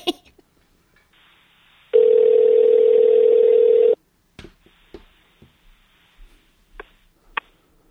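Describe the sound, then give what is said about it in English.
A loud, steady telephone dial tone of an outgoing call hums for about two seconds, preceded by faint line noise and followed by a few sharp clicks and taps on the line. “So with that being said, let's just get on the phone right now.”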